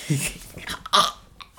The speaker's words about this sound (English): But, you just fucking burp in my face.